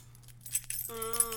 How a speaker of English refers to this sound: I'm getting the keys. I'm getting the right keys here. Yeah. Oh, I dropped them on the floor. Let me. Oh, I grabbed them. Okay. They've been jangling this whole time. I don't know. These are a lot of keys.